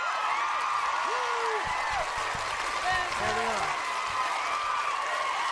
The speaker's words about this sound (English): Do we have music? No, we have even better. We have the crowd going wild, right? The crowd is going wild. Eventually, the crowd will go wild.